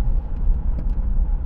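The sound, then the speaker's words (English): Steady, low engine and road rumble fills the whole stretch, like riding inside a moving car, with a constant droning hum and no voices. “And I've gone down 10 miles an hour in driving.”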